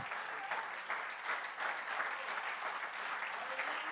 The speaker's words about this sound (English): Clap your hands unto the Lord one more time.